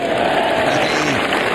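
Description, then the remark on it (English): A large golf crowd bursts into sustained applause and cheering after a putt is made, a dense wash of clapping and excited voices holding steady and loud from start to finish. “Yeah, I made the putt, and the crowd went just crazy.”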